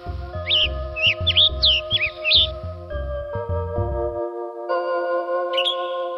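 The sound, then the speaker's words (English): A tanager from the east coast of the United States, where the forests are denser, gives a quick run of sharp, chirpy calls, then one last call a few seconds later, over a steady humming drone with low rhythmic thumps early on. “Other birds, like this tanager on the east coast of the United States, where the forests are a little denser, has one kind of call.”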